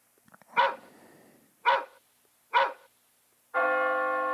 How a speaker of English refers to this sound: I think the dog is going crazy. Hold on, I'm so sorry. Right in the middle of the show. I think someone's at the door.